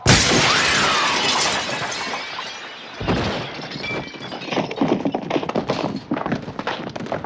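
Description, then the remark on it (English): A loud burst of window glass shattering as a possessed character jumps out the window in a film scene, followed by a scatter of tinkling shards and debris falling in irregular clinks for several seconds, with no talking. “And he screams no, and he jumps out the window.”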